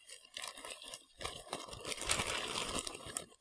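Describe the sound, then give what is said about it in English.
Fingers riffle through a stack of uniform paper index cards bearing names, a steady run of crisp, papery flicks and rustles with a brief pause partway through. “Uniform pieces of paper, the little pieces of cardboard, they're index cards. My fingers are rifling through the names.”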